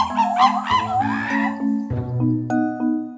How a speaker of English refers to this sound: Do you have an answer? Monkey! It's monkeys. Here's what monkeys sound like in real life.